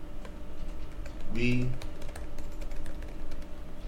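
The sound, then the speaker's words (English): Steady clatter of fingers typing on a computer keyboard, a run of quick light clicks throughout, with a brief murmured voice sounding partway through. “I'm sitting over typing the wrong.”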